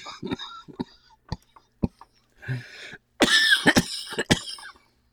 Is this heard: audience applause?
no